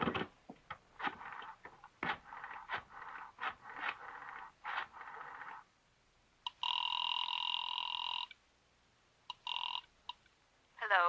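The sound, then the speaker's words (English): A telephone is dialed with a run of clicking, rattling pulses, then a steady electronic ring sounds twice, a long burst and a shorter one, clear, with no voices. “May I use your phone?”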